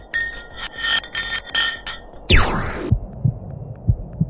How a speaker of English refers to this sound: After the effortless digging, they decided to drop some ice to the bottom of the hole to see what would happen next. They heard some really unusual sounds.